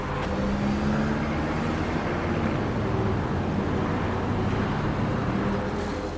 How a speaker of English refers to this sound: Federal Boulevard is 5 lanes in total, 2 lanes in each direction, and a center turning lane. The girl looks left and then right as traffic approaches from both directions.